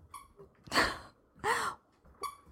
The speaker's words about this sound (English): Can you hear that? Okay. She's being a doll, but here's my news. I'm going to just kind of jump into this. You hear that? I got a puppy.